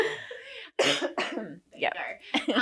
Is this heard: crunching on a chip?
no